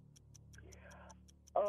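A quiz timer clock ticks steadily and quickly, crisp evenly spaced clicks at a brisk pace, with a voice faintly beneath and then someone starting to speak loudly at the very end.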